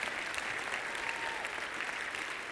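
An audience claps steadily, producing a dense, even wash of many overlapping hand claps that holds at a consistent, moderate level throughout, with no voices standing out.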